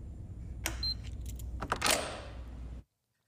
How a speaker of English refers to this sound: That's using a fob to unlock a door to a building and then opening the door.